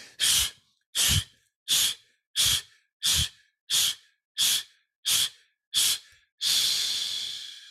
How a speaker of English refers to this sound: you're gonna blow out the candles on that cake. Just like that, right? Wow. But let's do 10 of them in a row. And you can use your arms like this if you want or not. It's up to you. But you're just going to blow out 10 times. Here we go.